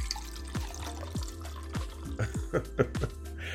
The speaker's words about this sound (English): I'm opening up the bottle and I'm pouring it in, that way you can hear it.